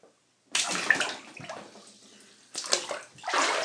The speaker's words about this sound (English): I'm getting in the tub now, folks. Got to get the equipment set up here. Do-do-ba-boo. Okay. And I am now stepping into the tub.